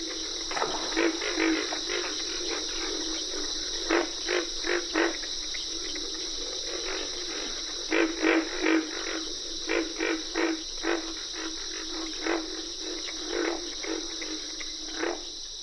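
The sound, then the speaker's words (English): Pig frogs grunt in irregular bursts, some quick doubles and triples, over a steady, shrill chorus of cricket and carpenter frogs that never lets up, at a wet grassy prairie in the Okefenokee National Wildlife Refuge, Georgia. No voices, just a dense wetland night chorus. “Pig frogs are the featured crooners at a wet grassy prairie in the Okefenokee National Wildlife Refuge in Georgia.”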